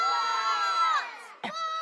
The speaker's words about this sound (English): Everybody, we're going to do one more scream it out round. We're going to say 1, 2, 3 and scream out your answer. 1, 2, 3.